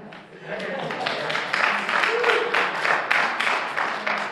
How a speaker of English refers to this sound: The sad reality, though, guys, is that many Christians wouldn't clap like you just did.